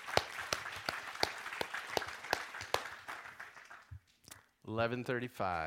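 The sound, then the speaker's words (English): A crowd applauds for several seconds, a dense patter of clapping with a few sharp, louder claps standing out, fading away before a man starts speaking. “I think we should give him another round of applause for being courageous.”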